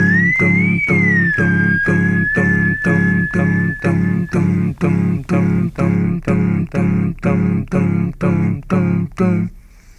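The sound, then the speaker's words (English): An overdubbed group whistles a sustained melody imitating a French horn line, with group vocal harmonies, over steady, pulsing chords. The whistling is fairly loud and fades out about halfway while the rhythmic backing continues to the end. “which seems to be a short transitional section featuring some group harmonies overdubbed with some group whistling, mimicking the French horn line that we know.”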